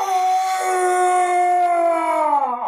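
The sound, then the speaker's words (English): A single long, loud howl held steady for nearly three seconds, a man slamming his fist into his chest and imitating a wolf, its pitch sagging and trailing off at the end. No other voices or sounds. “slams his fist into his chest and howls.”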